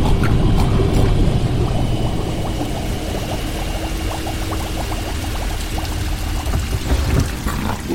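Water gurgles and drains away steadily, a busy churning, bubbling flow with a low rumble beneath, fairly loud, with no voices.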